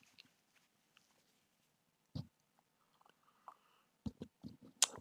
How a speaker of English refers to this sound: I need to have a sip of my Red Bull. Hold on for a second.